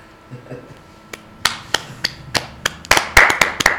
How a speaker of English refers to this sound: I had to clap with that part of my hand because it just sounded awful right on the podcast. If I didn't do that, I had to step in.